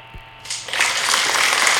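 An applause sound effect played on a radio program kicks in after a brief quiet pause, swelling quickly into a steady, dense wash of crowd clapping that holds at full volume to the end.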